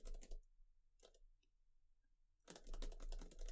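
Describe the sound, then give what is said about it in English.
Quiet computer keyboard typing, someone writing a rule into a Word document, comes in bursts: a quick flurry of key taps, a pause with a few stray clicks, then a longer, steady run of rapid keystrokes. No voices are heard. “I'm going to tippity tap.”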